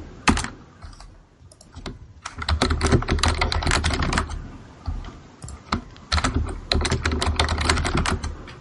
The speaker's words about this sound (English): such powerful typing sounds. The keyboard's right next to the, where is this?